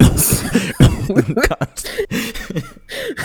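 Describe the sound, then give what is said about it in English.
A person imitates General Grievous's wheezy, hacking cough, with several rough bursts and raspy throat sounds in quick succession, loud, followed by gravelly vocal noises. “General Grievous and his chronic cough.”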